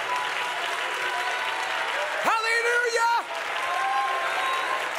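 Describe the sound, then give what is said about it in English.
A church audience at a Sunday service on January 8th claps to the Lord steadily in a dense, continuous wash of applause, while one voice rises above it with a loud, sustained shout of praise to the Lord for about a second before fading back into the clapping. “And if you believe the Lord's going to help us, I want you to clap your hands to the Lord and give the Lord a shout of praise here in this house.”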